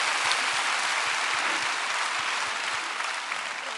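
A crowd claps steadily for a man who has come up to speak, a dense, sustained wash of many hands, loud and even with no voices rising above it.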